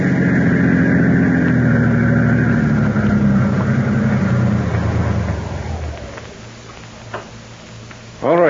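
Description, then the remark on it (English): A car engine hums steadily with a deep, rumbling drone as the car is driven, then eases off and fades into quieter idling, followed by a few faint ticks and a sudden short burst at the end. “I think I will go for that drive.”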